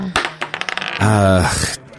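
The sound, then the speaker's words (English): Dice rolled for a perception check in a game clatter onto a hard surface in a quick, uneven burst of sharp clicks, then one keeps spinning with a steady, ringing rattle before settling to a stop. “I need to roll a perception check there.”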